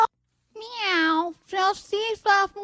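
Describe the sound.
A human voice played in reverse twice comes out sounding like a cat's meow: one long drawn-out mew followed by several shorter, choppy mewing bursts, fairly loud.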